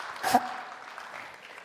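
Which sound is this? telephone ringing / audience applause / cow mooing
audience applause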